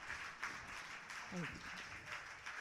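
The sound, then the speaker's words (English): Steady, dense applause from a poetry slam audience for a poet after the judges' scores fills the whole clip at a fairly low level, a continuous hiss of many hands clapping, with a brief voice rising out of it partway through. “And keep that applause going as we bring up the next slammer of the first round.”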